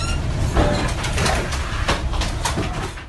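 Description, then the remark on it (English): The 12,000-ton livestock ship Gulf Livestock 1, carrying 43 crew and nearly 6,000 cows from New Zealand to China, creaks and groans in a typhoon in early September 2020: steady rumbling storm noise with irregular cooing, strained creaks rising above it, loud throughout and with no voices. “You're listening to the sound of 12,000 tons worth of ship caught in the middle of a typhoon.”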